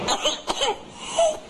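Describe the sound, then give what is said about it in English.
A quick run of harsh coughs from a whooping cough fit, followed by a strained, high-pitched whooping intake of breath as the person tries to catch their breath, fairly loud, with no talking. “The disease is known for the dramatic whooping noise its victims make as they try to catch their breath after coughing spells.”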